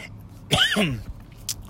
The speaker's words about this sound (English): sorry for the cough